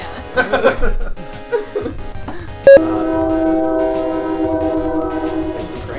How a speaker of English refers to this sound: There's a train going by, so I'm avoiding participating in the conversation because that would be really hard for me to edit.